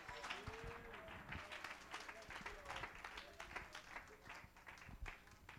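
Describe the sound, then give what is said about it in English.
An audience at a church service claps hands together in a dense, sustained burst of applause, steady and fairly loud throughout, with faint voices mixed into the crowd noise. “Somebody clap your hands all over this house.”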